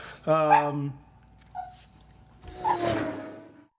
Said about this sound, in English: Yes, we did have to take a little break there to fuck with the dog who hears her own barking and gets all uptight.